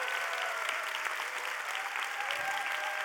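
Steady, dense applause from an audience fills the whole stretch, many hands clapping at once in a continuous crackling wash, fairly loud, with no voices standing out.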